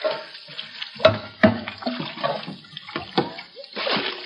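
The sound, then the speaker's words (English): Water being bailed with a bucket from a boat holding about a foot of water: irregular sloshes and sharp splashes over a continuous watery wash, with a few louder scoops standing out. “We'd better start working the bucket, Asa. There must be a foot of water in the boat already.”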